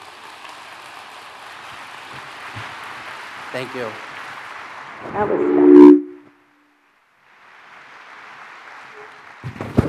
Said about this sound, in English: Folks, please, let's give him the biggest, biggest round of applause and welcome,